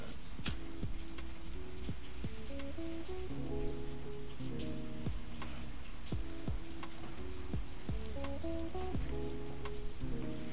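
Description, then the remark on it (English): Steady cold rain pours down in Florida with a constant hiss, scattered sharper drips and ticks popping out over it, while faint sustained tones hum underneath. No one speaks. “Oh, nah, it's straight rain. Getting that cold rain.”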